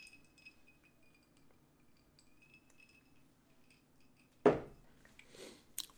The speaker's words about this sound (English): I wonder how much that clean, like, ice to the glass is going to land in the podcast.